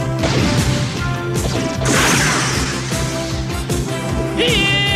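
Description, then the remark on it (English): Loud explosion blasts crash one after another in a dense, continuous barrage, with a swooshing surge in the middle and a brief high whine near the end: blasts erupting around Vampire, launched by Rhino from a command center tube. “So anyway, so then we cut to blasts erupting around Vampire.”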